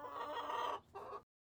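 Seven chickens cluck in a coop: one long, loud burst of throaty calls, a brief pause, then a shorter second burst before it cuts to silence. No one speaks.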